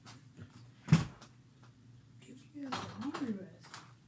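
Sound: door being closed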